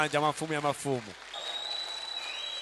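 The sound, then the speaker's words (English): A voice calls out briefly, then a church audience claps in praise of Jesus in a dense, steady wash of applause that carries on to the end, with a thin high whistling tone above it. “Clap more for the King of Kings.”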